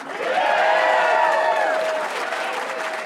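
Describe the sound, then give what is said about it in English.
A small live audience of only about 100 people cheers and applauds at the Clock Tower Cabaret in Denver, with dense clapping and whooping voices swelling loudly and then easing slightly, without any single speaker. “That lively crowd you just heard was actually really small, only about 100 people.”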